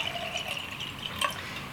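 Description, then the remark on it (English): Water is poured from a pitcher in a steady, quiet stream with a faint gurgle during a water break. It is brief, and there is no talking. “It's down there for that pitcher of water here.”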